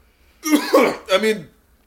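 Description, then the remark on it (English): A person coughs twice in quick succession, harsh and throaty, fairly loud, with no talking around it. “Coughing like a bitch in such company with such product?”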